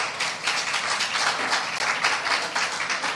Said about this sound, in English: Can we give a hand clap of praise for Brian and our worship team?